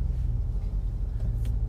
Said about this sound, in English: Sorry, I'm very distracted right now because I am at a school picking up my son, and there's kids walking everywhere and cars moving everywhere, and now I'm in the pickup line and we're staying still so I can focus again.